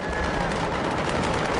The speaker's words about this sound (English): An explosion ripped through Beirut's port. People in Lebanon's capital had earlier spotted a large fire at the port, billowing dark smoke into the air. There were reports that a warehouse containing fireworks had caught fire.